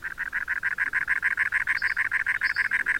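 A cactus wren calls in a fast, steady series of harsh, grating chugs, about five or six per second. The loud call runs throughout with no other voices.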